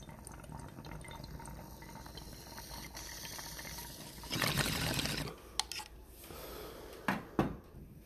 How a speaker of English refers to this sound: Oh, I need a bowl. Let's smoke a bowl. A little bowl break. Another bowl break. Cheers to those bowls.